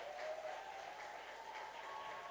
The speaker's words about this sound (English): Thank you, guys. Give them an applause. It's great.